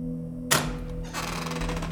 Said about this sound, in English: She thought the knock was someone from the call center. The center was on another floor, but occasionally, someone dropped by to commiserate after a bad call.